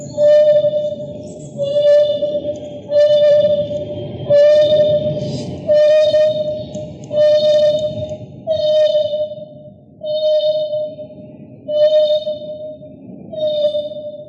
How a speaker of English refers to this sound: When I recorded the African hunting dog, it had been separated from the others for medical treatment and was mournfully howling.